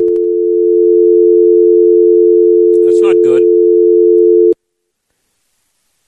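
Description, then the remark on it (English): A steady, loud telephone dial tone after a dropped call drones continuously for several seconds, briefly overlapped by a man's short remark, then cuts off abruptly into silence. “That's a dial tone. That's obviously not good. We lost Debbie Flood.”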